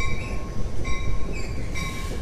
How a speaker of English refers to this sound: As I mentioned before, I live near the, by design, I live right in front of New Jersey Transit. There's the train coming right there.